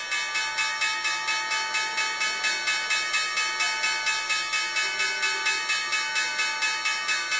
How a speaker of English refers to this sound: after we hear the opening bell at the New York Stock Exchange and what appears to be another down day in the offing